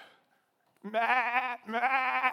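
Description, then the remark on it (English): Two loud, quavering sheep bleats, one after the other with a brief pause between, each wavering in pitch for under a second after a moment of near silence. “Sheep go, hey, Dad.”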